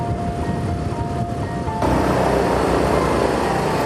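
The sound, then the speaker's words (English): A social worker's new small motor scooter engine hums steadily with a thin whine, then the noise swells into a louder, rougher roar partway through as it revs up, setting off for a home visit deep in a mountain range. No one speaks. “Social workers hop on their new scooters for their next visit.”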